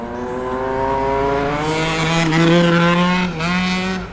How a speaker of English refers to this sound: Yeah, motorbikes. Loud motorbikes.